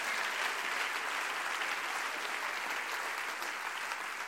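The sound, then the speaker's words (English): An audience claps their hands steadily for several seconds during a prayer service, a dense, even wash of many hands with no breaks or distinct beats, and no voices rising above it. “Clap your hands and say we're going through that gate.”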